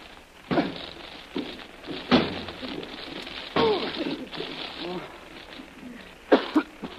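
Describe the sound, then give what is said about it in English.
Several heavy, irregularly spaced thuds of someone trying to smash through a locked door by slamming against it, with straining grunts and breathy effort sounds between the blows. “Now stand back. I'm going to try to smash my way through this door.”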